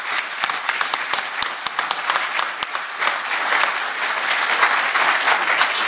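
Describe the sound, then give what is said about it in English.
A big, warm round of applause from a conference audience thanking the conference organizers, with dense overlapping clapping that holds steady and grows slightly fuller toward the end. “Let's give them all a big, warm round of applause.”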